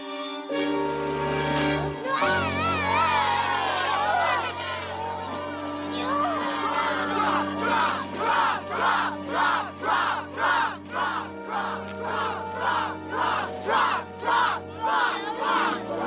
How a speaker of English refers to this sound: And as she embarks on the ropes course, everyone except Bart is booing her.